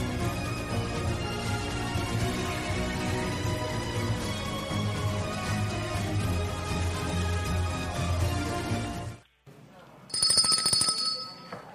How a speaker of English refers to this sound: My bell. I brought your bell, yes. Don't ring my bell. You ring and my bell, we're done.